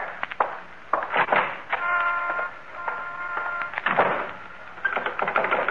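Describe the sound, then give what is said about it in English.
A front door is shut and locked: a series of sharp knocks and metallic clicks, a brief ringing squeak in the middle, then more rattling clacks of the lock. “And now the front door.”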